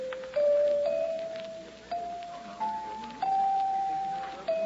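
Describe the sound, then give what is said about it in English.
Chimes ring out in a series of clear, sustained metallic tones, each strike stepping to a slightly different pitch, with light clinking and rattling as the chimes are handled. No one speaks. “Wonder how much these chimes are.”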